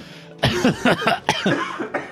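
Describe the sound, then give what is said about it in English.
A loud, close-up burst of forced, staged coughing right into the microphone, several harsh hacks in quick succession with a final short cough after a brief pause. “Did you have to do it in the mic? And that was a fake cough.”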